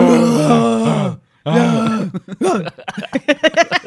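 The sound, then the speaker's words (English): A person imitates a sick lion's roar with two long, loud, growling vocal bursts separated by a brief pause, followed by choppy, rhythmic bursts like laughter. “Our lion impressions are also the same noise that a lot of homeless people on the streets of San Francisco make, just as normal conversing.”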